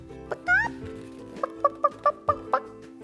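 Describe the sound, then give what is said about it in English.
A hen gives a short rising squawk, then a run of about six quick, evenly spaced clucks, fairly loud, with a low steady hum underneath and no talking. “Well, the hen laid an egg on the fireside rug.”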